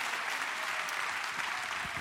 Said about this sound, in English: as I continue to recover after my accident and everything a couple weeks ago, announced to you that I can now clap.